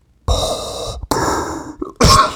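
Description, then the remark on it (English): Three harsh, loud, real coughs in a row, each a sudden raspy burst with short gaps between. No one speaks. “That was a real cough.”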